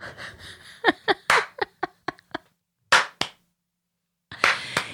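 Loud, sharp hand claps ring out in an uneven series of about ten, with a short pause and then a final flurry of claps. A faint chuckle mixes in at the start.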